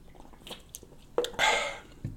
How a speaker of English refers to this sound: So, today, guys, let me sip my Michelada real quick.